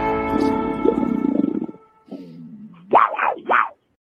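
A big cat roars and growls: a long rumbling snarl that dips into a low growl, then two sharp, rising snarls before falling silent. No one speaks.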